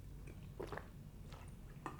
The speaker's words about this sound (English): I'm going to have some more water.